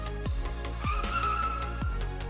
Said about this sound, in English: This system prevents the car from skidding out of control.